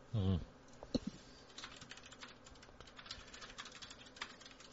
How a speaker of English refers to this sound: like, if you asked him, like, you know, what's the ratio of dark matter to matter in the universe or something like that, you'd hear keyboard strokes pretty quickly.